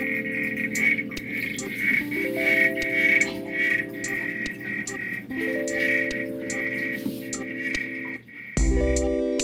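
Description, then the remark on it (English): Frogs give repeated mating calls, produced by contracting muscles in the throat: a series of sustained, buzzing tonal croaks that step upward in pitch, set against a steady high-pitched chorus of night insects, with no voices. “mates with a clicking sound, which it creates by contracting muscles in its throat.”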